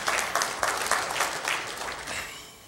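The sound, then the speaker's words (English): A crowd claps steadily, a dense patter of many hands with bright, crisp slaps that holds fairly even before tapering slightly toward the end, with no voices over it. “If you're clapping and you didn't stay on the bunk bed, don't be clapping for them.”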